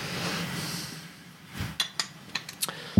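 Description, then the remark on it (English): A soft, steady rush of a drink being poured from a bottle, followed by a quick run of five or six bright, ringing glass clinks at an uneven rhythm, with no talking. “Here, go ahead and start pouring that and I'll open the second one.”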